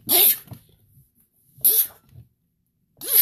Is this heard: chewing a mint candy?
no